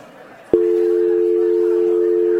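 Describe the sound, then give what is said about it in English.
After a half-second of quiet room noise, a voice sings a single steady, unwavering note that mimics a telephone dial tone. It holds loud and level until the end, with no other talking. “And I have a dial tone sound effect for you right now that I'm creating organically.”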